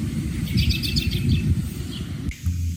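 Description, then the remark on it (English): Birds chirp and twitter in quick repeated bursts at backyard bird feeders in Chicago, recorded by GoPros attached to the feeders, set against a steady low rumble of outdoor background noise, with the calls clear. “Last week on The Brain Scoop, Grassley, while working from home, gave us a glimpse into the wildlife scenes happening in her own backyard by attaching GoPros to all of her bird feeders.”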